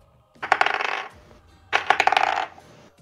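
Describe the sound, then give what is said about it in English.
A d20 die clatters and rattles across a hard surface twice, each roll a quick burst of bright tumbling clicks that settles after about half a second. “Make your roll. D20.”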